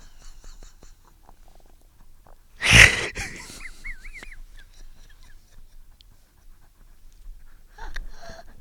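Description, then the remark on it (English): A person pants right into a microphone: a loud, breathy blast of air, followed by a few softer, raspy breaths that fade out, with no talking. “Get out of my mic. You sound like a dog, dude. Panting.”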